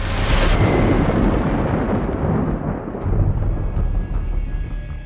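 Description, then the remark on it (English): A thunderstorm with a sharp, loud thunderclap that breaks into a long, deep rolling rumble, heavy, continuing for several seconds with no voices. “Just follow the storm.”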